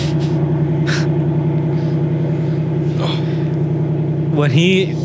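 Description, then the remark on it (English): A voice imitates the cold start of a Ram 3500 pickup truck: a loud, steady, rumbling engine drone held for several seconds, ending in a quick rising rev. “It's a cold start. It's loud.”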